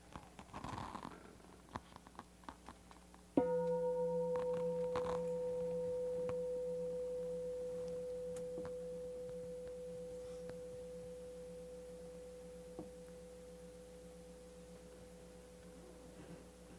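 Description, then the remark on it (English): A meditation bell is struck once after a moment of soft rustling, and its pure, steady ringing tone lingers and slowly fades away over more than ten seconds. “ring the bell and try as much as you can to listen to the bell for as long as you can hear it.”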